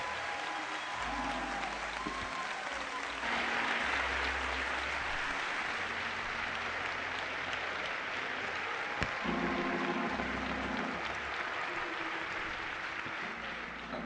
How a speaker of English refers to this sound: And now, let's give our Lord and Savior Jesus Christ for a hand clap for making this possible.